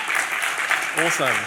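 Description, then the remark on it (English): An audience in Auckland claps steadily for the Youth Advisory Panel in a dense, continuous wash of applause; partway through, a voice rises over the clapping and continues to the end. “So can we give the Youth Advisory Panel a round of applause?”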